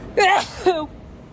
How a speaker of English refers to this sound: That's going to get me kicked off. Sir, there's no sneezing up here.